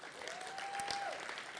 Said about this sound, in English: As we're closing today, can we just give him a round of applause?